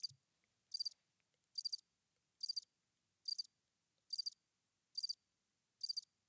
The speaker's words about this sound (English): Wow, that was a long cricket. Hey, the crickets don't sound so robot-y on the new Rodecaster Pro 2, because I had the cricket sound before, but they sounded like the electric crickets.